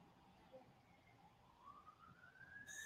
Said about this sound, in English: Yeah, that's actually a fire truck. The fire station is right across the street from my house. That was actually a fire truck.